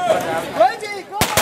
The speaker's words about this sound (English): The ancient ritual of firecrackers on the Lunar New Year. It's meant to scare the evil spirit away. Doesn't that sound like a good idea right about now?